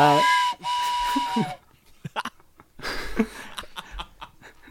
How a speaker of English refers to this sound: Train whistle? You're one thing. Oh, there it is. Trains are coming to Isengard, boys.